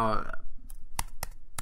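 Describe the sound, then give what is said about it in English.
A short vocal sound gives way to four crisp taps on computer keyboard keys, unevenly spaced, each a sharp clicky hit against a quiet background. “I'm tapping some keys.”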